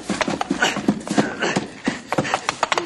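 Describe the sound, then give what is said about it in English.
A horse charges toward a man, its hooves clip-clopping in a fast, uneven stream of sharp, loud thuds over a busy, noisy background. “Look out for that horse, boss!”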